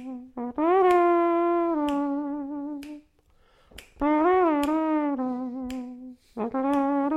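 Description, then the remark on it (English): Sharp finger snaps click along at a steady, roughly one-per-second beat while a voice hums or sings a wordless tune in long, wavering held notes, performed as a playing-out theme. “Am I even clicking in time to anything?”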